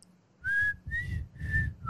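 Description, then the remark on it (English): A person whistles a short four-note tune from The Hunger Games, each clear tone held briefly with small pauses between, with a faint breathy rumble underneath. “Like, is that you whistle? I can't whistle right now. My lips are dry.”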